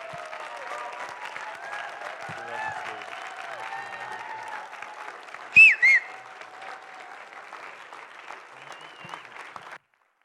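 A church crowd gives a standing ovation, applauding steadily for about ten seconds, with scattered hoots and cheers and a pair of loud, shrill whistles cutting through midway before the clapping fades out.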